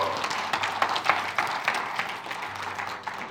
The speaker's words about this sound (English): First of all, applause for these people. Come on.